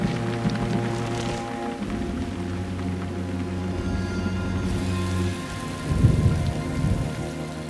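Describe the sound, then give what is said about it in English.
Steady rain patters over a low, continuous rumble of thunder, with a heavier roll swelling briefly near the end; a dense, enveloping nighttime storm ambience with no voices, an Atmos ambience put together for a scene. “And so this was kind of a scene we put together to talk a little bit about ambiences, and, you know, this is kind of a little fun Atmos thing with her wings, and it's a kind of nighttime thunder.”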